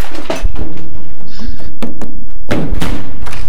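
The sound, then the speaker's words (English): A door in a house is shut with a heavy thud, followed by a few sharp knocks and clicks as the lock is turned, then a final solid thump. “Why did you lock the door?”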